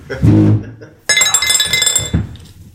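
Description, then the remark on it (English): A brief low murmur gives way to a 20-sided die tumbling across a hard surface, a sudden burst of bright, rattling clicks and clinks that tapers off over about a second and a half. “Roll a 20-sided dice.”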